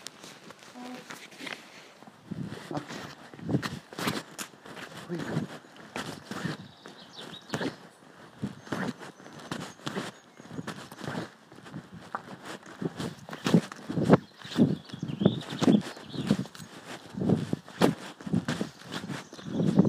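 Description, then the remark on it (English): Horse hooves clip-clop steadily across an open-air arena, a continuous rhythmic patter of dull thuds that grows a little louder toward the end, with faint background rustle. “You left the horse. No. The arena with the horse.”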